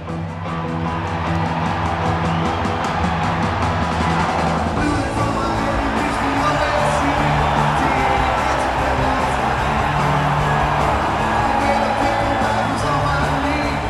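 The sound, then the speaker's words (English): A large crowd at a concert opener in a 5,000-seat venue in Burlington, Vermont roars with sustained cheering and screaming, loud and dense throughout, with scattered whoops rising above the wall of noise. “And I was right, because I will say, check it off the building, this is like one of the most insane responses from a crowd I've ever been in.”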